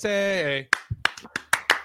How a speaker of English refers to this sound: By the way, I imagine that clap more like a hockey clap.